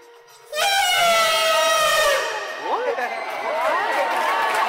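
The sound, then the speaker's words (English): In France, a man lets out a loud, brassy, trumpeting blast imitating an elephant call, held for about two seconds, then a crowd breaks into cheers, whoops and shrill yells. “Oh, that guy made a pretty good elephant.”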